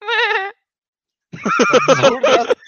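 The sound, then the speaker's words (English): A person imitates a reindeer call: a short wavering, bleating cry, a pause, then a longer rough, warbling series of grunting bleats, loud and with no other talk. “Deer, you know what a deer sounds like? No, I think that is not what deer like.”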